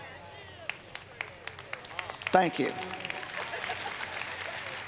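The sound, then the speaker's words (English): Scattered hand claps start out sparse and uneven, then thicken into a brief wash of audience applause, fairly modest in volume, with a voice speaking briefly over it. “I guess I'll say it till I can get a better clap than that.”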